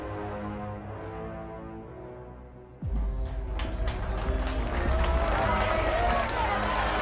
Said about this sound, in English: Yo, they clapping for this nigga and shit.